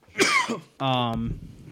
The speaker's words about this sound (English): Sneezing.